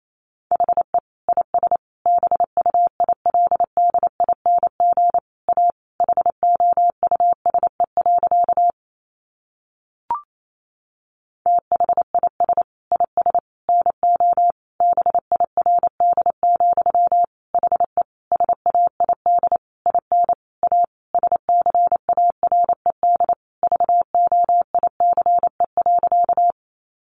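Morse code practice at about 28 words per minute, sending sentences made from the top 700 words: a single steady mid-pitched beep keyed on and off in rapid dots and dashes, alone and even in loudness, with one short pause and a click partway through.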